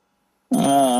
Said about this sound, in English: All right. I'm taking a chance. I mean, how often are we getting a random phone call?